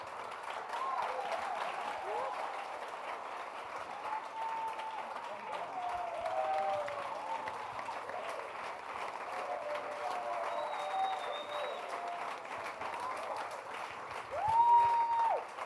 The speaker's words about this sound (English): Wow, let's give them a round of applause another time. Like I said earlier on, this is a good Sunday to be in church.